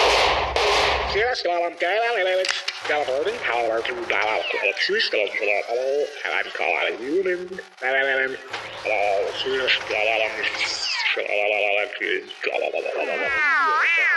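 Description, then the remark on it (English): Bursts of gunfire crackle through a loud, busy mix of warbling, sweeping tones and garbled voice-like sounds, with a heavy blast at the start and sharp reports scattered throughout. “I knew I should have sprung for the bulletproof case.”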